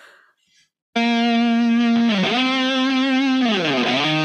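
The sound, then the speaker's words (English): A crunchy, distorted electric guitar from an already recorded song sounds a loud, sustained note with rich overtones, bending downward in pitch twice before settling back. No one speaks over it, and a brief quiet passage precedes it. “So I'm just saying, for all you guitar players out there, this is not what my tone sounds like normally.”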